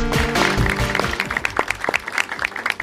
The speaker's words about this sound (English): Yeah, the applause, they sound great on air, so we really appreciate that. Thank you.